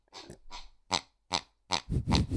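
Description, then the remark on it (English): A squeaky pig toy is stepped on repeatedly on the floor as a kick drum, giving a run of short honking squeals and grunts that grow louder and heavier toward the end, with no talking. “Put that on the floor and I'm stepping on a pig. And the harder you push on it, the different sounds.”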